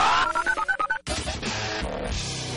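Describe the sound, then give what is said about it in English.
A rapid string of about eight telephone dialing tones beeps in quick succession for a second, then cuts into a loud, busy burst of jumbled noise. “For more on that, let's speed dial.”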